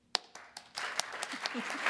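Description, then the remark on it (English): A few scattered claps quickly swell into steady applause from an audience answering a quick poll question by applauding, a dense wash of many hands clapping that holds at moderate loudness to the end. “I'll ask for a round of applause to answer these questions.”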